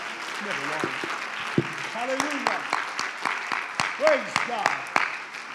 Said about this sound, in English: If anybody is ready for a breakthrough, would you clap your hands and magnify him?